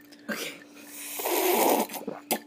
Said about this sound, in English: Okay. Did you hear it, podcast? That was a loud gulp.